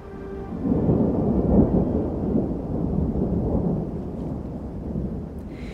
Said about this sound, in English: All night, the sky lit up like a strobe light, thunder rumbling long and menacing, but not one drop of rain reaches me.